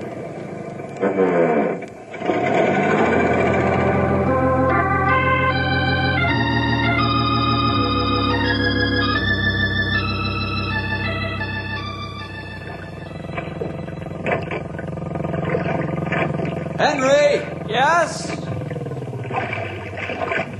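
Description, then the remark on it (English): A small outboard boat motor, put away in storage last fall, drones loudly, its pitch stepping up and down as it revs, then settling. Brief shouted voices come at the start and near the end. “How's it doing? She sounds fine. Of course, I put it away carefully, according to directions last fall.”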